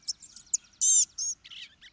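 A small bird gives a quick run of thin, high, wheezy mewing notes, one longer and louder than the rest, with no other sounds around.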